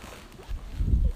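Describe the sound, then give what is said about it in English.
Gusty wind blowing outside a tent, a low, rumbling buffeting that swells louder toward the end, with no voices. “It's very windy. Do you hear the wind?”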